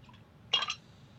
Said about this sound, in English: We're going to pour that in a cup.